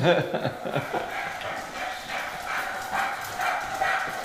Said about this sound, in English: We do have a dog with us.